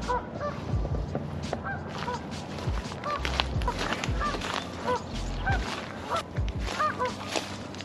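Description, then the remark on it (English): A flock of Canada geese in a park honks repeatedly in overlapping, irregular calls, steady throughout, with outdoor rumble underneath and no talking. “Let's try to sneak up on these Canadian geese.”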